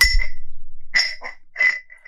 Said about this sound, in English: Oh, my God, you broke the bell! No, I'll fix it.